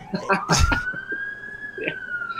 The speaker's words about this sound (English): Yeah. And shout out to the sirens in the background. That's the good luck sign. That means it's going to be a great show.